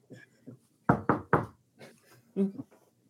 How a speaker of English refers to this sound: How do you go into that door? I knock first.